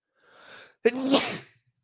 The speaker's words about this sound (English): Sneeze. Achoo. Apologies.